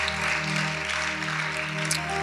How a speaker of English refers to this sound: Somebody clap your hands and celebrate Jesus.